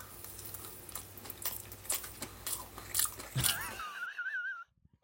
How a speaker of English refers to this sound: He's just playing with so it. So obnoxious the way he chews. He's just playing with it.